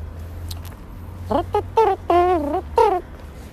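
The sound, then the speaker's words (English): A man's voice imitates an elephant trumpeting: four short, nasal, wavering blasts, the pitch rising and bending, the last two longer, over a low steady background hum. “Have you heard my ear trumpet?”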